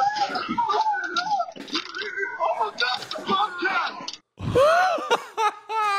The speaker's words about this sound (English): Here, let's hear how he screams right now.